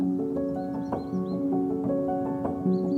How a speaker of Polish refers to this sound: Pieśń samca tego ptaka to donośne, długotrwałe bulgotanie. Znamiennym głosem jest także ostre, syczące czuszykanie. Natomiast samice cietrzewia gwałtownie gdaczą, kończąc przeciągłą, nosową sylabą.